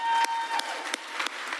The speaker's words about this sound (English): But we finally, through a lot of hard work and prayer, opened up our school-age classroom. So I want you to clap.